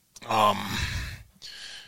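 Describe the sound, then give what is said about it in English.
A large 110-pound dog, wanting to be on the speaker's lap, breathes heavily into the microphone, a throaty, voiced huff followed by two loud, airy exhalations separated by a brief pause. “You might hear some heavy breathing in the microphone today, because it's not me, I swear.”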